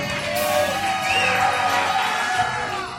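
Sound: audience applause and cheering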